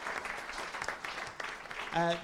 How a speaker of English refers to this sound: Before you go, just a few thank yous. Could we have a round of applause for all the staff here at Giant Dwarf doing a great job?